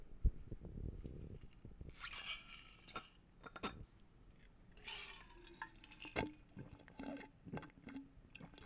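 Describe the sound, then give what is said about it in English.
Close-miked ASMR sounds of someone drinking water: wet slurps, gulps and sharp mouth clicks in an irregular rhythm, loud and intimate with no talking. “you want to give them some ASMR water drinking before they leave?”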